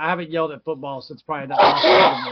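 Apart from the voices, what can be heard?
sneeze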